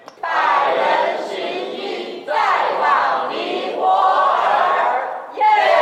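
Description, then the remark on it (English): A team of volunteers, organized by Rotary International to spread CPR and AED knowledge in Nepal, shouts a slogan together in loud, energetic bursts, with three or four rising chants that swell and briefly dip between phrases. “Shown here shouting a slogan, the team also visited Nepal in 2019.”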